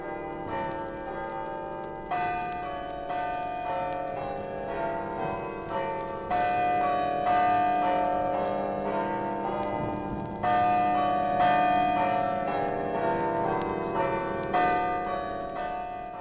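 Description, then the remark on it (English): Church bells of the Church of the Immaculate Conception in Wexford chime continuously in a sequence of clear, ringing tones, with new strikes every couple of seconds layered over a sustained, resonant hum. No voices are present. “And here you may hear a welcome from the chimes of the Church of the Immaculate Conception, the joy bells of Wexford.”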